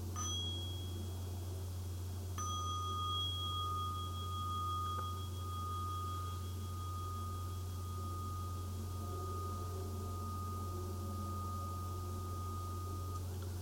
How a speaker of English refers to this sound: Well, that was a quiet bell. I'll try not to be too loud with it.